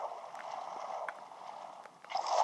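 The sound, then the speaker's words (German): Continuous watery splashing and gurgling of video game swimming as the player swims back up, a steady churn with small bursts, swelling louder near the end as the swimmer breaks through. “Erstmal schwimme ich wieder hoch.”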